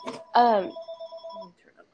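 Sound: house phone ringing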